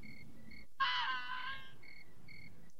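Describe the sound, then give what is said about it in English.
Crickets chirp in steady, repeating pulses, briefly drowned out near the start by a louder, harsh, tonal burst that fades before the chirping resumes. “Is that Crickets from Friday the 13th, Part 4?”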